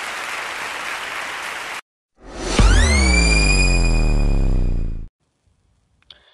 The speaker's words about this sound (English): Come on, clap your hands.